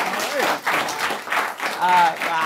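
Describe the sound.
An audience applauds with steady, dense clapping that fills the whole moment, while a couple of voices call out briefly over the noise.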